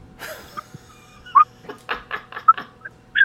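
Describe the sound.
A person imitates whistling for a dog: a few short, sharp whistle chirps in a steady mid-high pitch, broken up by breathy puffs and quiet noises in between.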